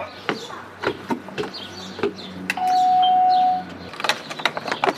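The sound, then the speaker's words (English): Birds chirp in short, scattered bursts outdoors in Cambridge, Massachusetts, mixed with clicks and rustling, while a steady ringing tone sounds for about a second in the middle. “Ooh, is that the sound of Harvard-educated birds? Yes, yes it is.”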